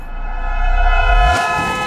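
A car horn blares in one long, steady honk at a person standing in the road, over a low engine rumble that swells and then drops away as the car rushes past.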